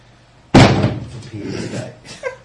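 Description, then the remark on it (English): A single heavy thud as a heavy toy is dropped onto a hard hallway floor, loud and sudden, followed by a rumbling decay and faint rattling, with no talking. “dropping his toy on the floor in the hall. That's an immensely heavy toy.”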